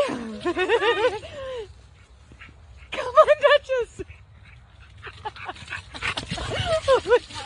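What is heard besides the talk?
dogs whimpering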